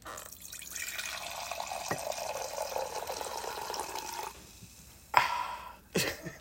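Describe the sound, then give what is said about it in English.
Wine streams steadily from a box spout into a mug for about four seconds, a trickling pour, then stops, followed by two sharp knocks. “I'm the box of wine that sounds like a piss pour”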